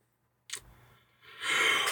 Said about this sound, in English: I know. I just yawned. I'm getting sweepy.